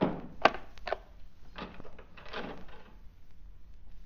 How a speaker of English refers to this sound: Lock the door